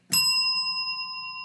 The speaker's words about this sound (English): Well, then, okay, there's a part two where you can get the bell rung.